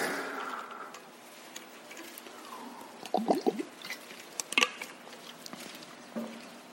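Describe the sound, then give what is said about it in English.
Quiet handling sounds of getting a drink of water: soft clicks and taps, a brief liquid gurgle midway, then a few more light knocks, all fairly faint with no talking. “I'm going to get some water while all of you are turning.”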